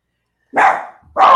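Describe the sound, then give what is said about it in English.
A dog lets out two loud barks at people coming by, the second following the first after a brief pause, with no voices around them. “I have a dog. His name is Devin. He barks when people come by.”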